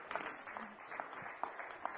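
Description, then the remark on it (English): Audience applause in a church, a steady wash of many hands clapping at moderate loudness for the whole stretch, with a few sharper individual claps standing out and no voices on top. “Yeah, we can clap.”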